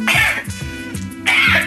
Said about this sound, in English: I need a cough lozenge. I might have something going on in my throat.